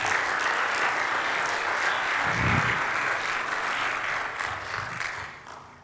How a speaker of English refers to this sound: Round of applause.